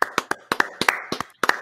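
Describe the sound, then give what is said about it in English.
Sharp hand claps, about ten in quick succession, falling into loose uneven pairs. Each crisp, bright smack fades fast, with no voices underneath. “Ladies and gentlemen of Pats Nation, the Patriots outsider, get ready to clap”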